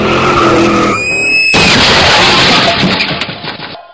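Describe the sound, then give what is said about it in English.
A car's tires squeal in a long skid, then a loud, sudden crash of crunching metal and debris rumbles for a couple of seconds before cutting off. No one speaks. “So, so I was thinking recently about, I get this urge to every once in a while when I'm like editing a podcast to just, edit in like the sound of like a car crash.”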